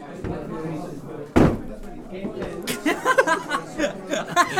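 A sudden loud crash and clatter as someone topples backwards in a chair, followed by people laughing and chattering.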